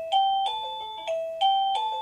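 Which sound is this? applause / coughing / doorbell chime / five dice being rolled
doorbell chime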